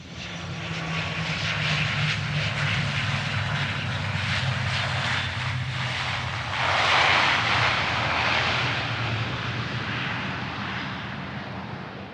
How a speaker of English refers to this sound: Meanwhile, in another part of the world, a passenger jet lands on a seemingly abandoned runway in the desert. A handful of armed figures exit the plane, and then the plane explodes.